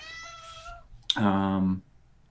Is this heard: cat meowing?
yes